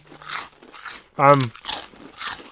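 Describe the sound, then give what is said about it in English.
Loud crunching of small peanut snacks from a 40 gram bag being chewed in several rough bursts, with a short voiced murmur breaking in midway through the chewing. “Crunch off. Here we go.”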